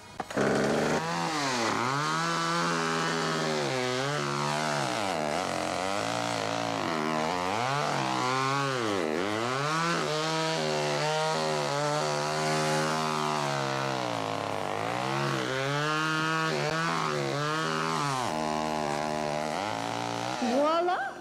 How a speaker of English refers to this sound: Okay, now it's time to carve those features. Now, choose your cutting instrument wisely. Lots of folks like to use the traditional butcher knife for this part, but I prefer this. A chainsaw.